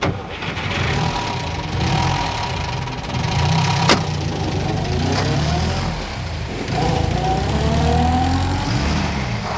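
A car engine runs steadily, its low rumble rising and falling with a few revs, and a brief sharp click partway through. Nobody speaks.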